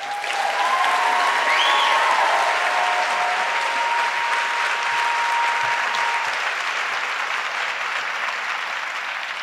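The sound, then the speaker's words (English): Sustained audience applause, a dense, steady wash of clapping that stays loud for the full stretch, with a few faint tonal whistles or cheers rising briefly over it early on. “Congratulations on this well, well-deserved applause.”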